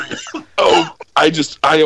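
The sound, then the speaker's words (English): Someone coughs and sputters after almost choking, with a quieter rasp followed by three loud, harsh, throaty bursts in quick succession, each strained and partly voiced. “I almost choked.”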